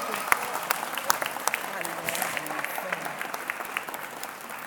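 An audience breaks into sustained applause for educators after a prayer, many hands clapping densely and steadily for several seconds.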